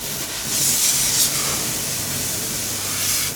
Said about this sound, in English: He convulses violently for a few seconds before being thrown clear of the wreckage, where he begins to smolder and flame up until TSA comes over with a fire extinguisher and hoses him down.